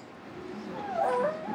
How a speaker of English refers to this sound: Yeah, she turns on a light, and we are fine with baby noises, so you just hear it.